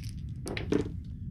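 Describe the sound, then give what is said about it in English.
Red dice rattle and tumble across a surface during the first roll of a tabletop role-playing game, a fear save, giving a few quick, sharp clicks and clatters that sound fairly soft, with no voices over them. “Rolling my red dice.”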